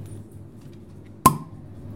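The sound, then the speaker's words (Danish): A bottle of lambic beer is opened with one sharp, bright pop and a short ringing glassy tail, set against a low, steady background hum. “Så nu vil jeg åbne den.”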